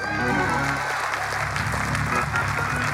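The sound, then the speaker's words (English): A large crowd in a charismatic Pentecostal church claps steadily and loudly for a few seconds, the dense applause blending with sustained musical tones and a murmur of voices. “Clapping.”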